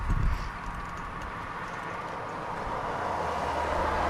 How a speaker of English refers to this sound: And as you can hear, there's a lot of traffic on this road. Cars are coming right off the bridge. So they're coming right off the bridge. You even have to wait to be able to pull out.